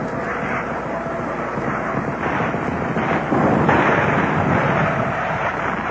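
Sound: jet aircraft flying over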